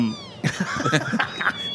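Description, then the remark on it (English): A cat recording from the internet, played in a studio, meows in a quick run of strained, wavering cries, fairly loud, the calls blending into a continuous yowl with no talking. “Where do you get this stuff? Well, the internet is vast. The internet is a huge place for stuff. There are no cats here, folks.”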